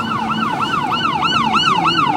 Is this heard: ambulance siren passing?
yes